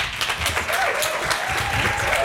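A crowd applauds to welcome up the panel host at an evening panel event: dense overlapping claps forming a sustained, fairly loud wash of noise with no pauses, while faint voices murmur underneath.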